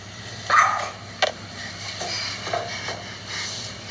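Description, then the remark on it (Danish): A dog lets out a loud, shrill yelp, followed by a couple of shorter, sharper squeals, all over a steady hissing background noise with no one talking. “Det er de der skrig, ja. Pille har slaget. Pille har skrigende. Hvorfor skriger du?”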